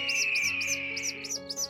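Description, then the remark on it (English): Newly hatched chicks chirp in a nest: six evenly spaced, high-pitched peeps repeat in a quick steady rhythm over a sustained tonal hum, with no voices. “The eggs have hatched.”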